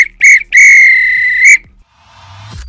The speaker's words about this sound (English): If this were a real bit of extra time, this is when the ref blew the whistle because it's finished.